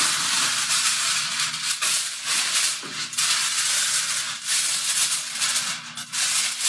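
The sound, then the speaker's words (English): Sheets of aluminum foil are crinkled and torn to cover a turkey in a pan, a steady, loud crackling rustle with irregular bursts of sharper crumpling throughout, with no talking. “So now I'm going to cover it up with foil.”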